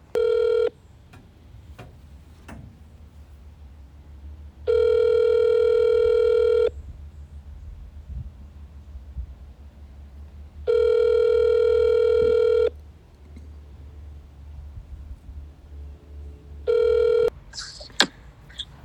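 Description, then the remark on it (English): A phone call rings out with steady electronic ringback tones, three long bursts about two seconds each separated by pauses, then a short final tone cut off as the line clicks open. “Thank you for answering your phone.”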